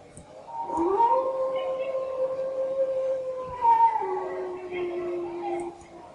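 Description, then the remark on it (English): A deep-throated, drawn-out feral howl of a female creature, heard from upstairs, voiced by a person imitating it, holds steady for several seconds before its pitch sags lower and trails off. “And she lets out a deep throat, feral howl, just like so.”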